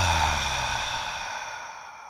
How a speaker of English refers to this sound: Inhale, nose, belly goes out like a balloon. Exhale, belly towards your spine.